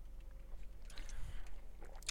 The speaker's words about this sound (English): Just took a sip of bang. Unnecessarily at 10:25, because it's not like I'm going to go train or anything. I really don't know why I'm drinking bang right now.